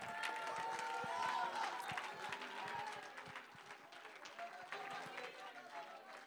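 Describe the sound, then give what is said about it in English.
An audience claps steadily and unevenly while voices holler and shout together, a lively, fairly loud crowd sound throughout, as believers stand up, clap their hands and shout. “I don't like all that hollering. I don't like all that growling.”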